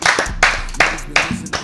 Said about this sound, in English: Clap it up, clap it up, clap it up, clap it up.